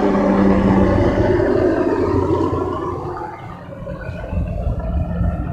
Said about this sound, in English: Fucking Magnum PI helicopter.